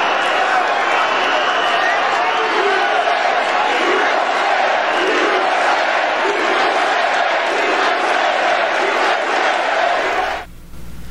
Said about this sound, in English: So you got Democrats booing for a legislator who took a sniper bullet to the hip, and they're booing, and you got Trump's crowd shouting, USA, USA.